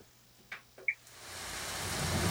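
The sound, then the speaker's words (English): Steady rain hiss swells in and grows louder, preceded by a few brief soft taps and a faint high chime, with no voices, like the start of a rain-themed instrumental track played from an instrumental CD. “I have the instrumental CD, …, and I said, do you have a particular track?”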